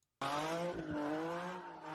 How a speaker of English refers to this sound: And there's a guy drifting in the middle of the street doing circles and whatnot. And this cholo that looks like one of the main cholos from Training Day is in the street, like narrowly dodging the car as it passes around him.